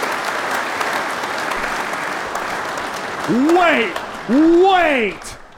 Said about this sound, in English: Round of applause for …, man.